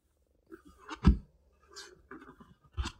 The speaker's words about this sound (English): Excuse the sounds of my pages turning.